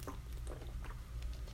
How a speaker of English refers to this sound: Let me drink some water.